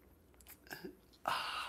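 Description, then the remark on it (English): A few soft mouth clicks and small noises, then a sustained slurping sip of coffee that continues to the end, fairly loud against otherwise quiet surroundings. “It's called the simultaneous sip, and watch it happen right now.”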